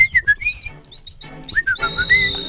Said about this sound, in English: It's a whistling event.